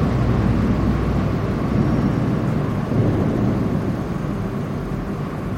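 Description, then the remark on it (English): A boat passing under a bridge in London, heard as a loud, steady low engine rumble with a broad wash of noise that holds evenly for several seconds without any voices. “There's a boat.”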